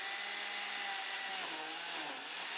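A blender runs at full speed blending a smoothie with whipped cream added, a loud, steady motorized roar with a whining hum that holds constant throughout, with no voices.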